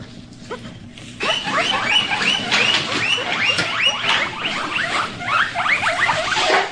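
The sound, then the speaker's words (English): A chorus of high, bright squeaks and chirps from several happy guinea pigs, overlapping rapidly and continuously after a short quiet start, fairly loud with no talking. “That was a hard one to guess, but those were happy little guinea pigs.”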